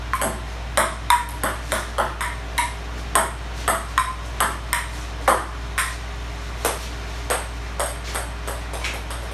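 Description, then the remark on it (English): A ping pong ball clicks back and forth in a steady rally on a small table about half the size of a regular ping pong table, about twenty sharp, bright taps at a brisk, slightly uneven rhythm over a low steady hum, with no voices. “Normally this would be played on a ping pong table. It's about twice the size of this one.”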